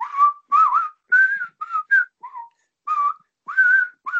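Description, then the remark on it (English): A person whistles a quick, chirpy melody in short repeated bursts, their own whistling used as a phone ringtone; the whistling is clear and fairly loud, with brief pauses between phrases and no talking. “It's me whistling like that.”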